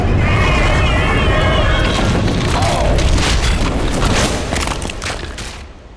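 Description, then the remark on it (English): A magical explosion backlash rips through a research laboratory after a cauldron opens a portal. It roars out as a loud, sustained rumbling blast, with warbling shimmery tones at first and crackling bursts throughout, easing off slightly in the final second. “With a bloom of arcane power, the cauldron swallowed them both, drawing them into a portal of silvery confusion before a backlash ripped through the research laboratory.”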